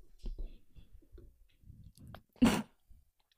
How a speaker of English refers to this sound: Is Freddy barking? Sounds like it.